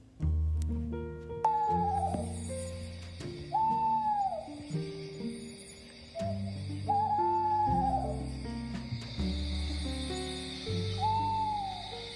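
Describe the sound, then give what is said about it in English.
An owl, the very old, wild Wizardly Owl, hoots about five times at a slow, uneven pace, each call swooping in pitch, layered over steady background music with sustained low notes. “Wizardly Owl was a very old, very wild owl that would swoop down and take all the sweet kitties' prized possessions all over the land.”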